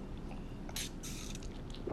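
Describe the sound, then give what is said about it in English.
A loud, deliberate slurping sip of scotch: two quick airy bursts of drawn-in breath and liquid over low background noise, with no talking. “I like to sip nice and loudly.”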